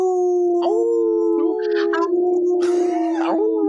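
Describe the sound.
A person imitates a wolf with a loud, drawn-out howl that wavers and slides in pitch, held steadily for several seconds with no talking.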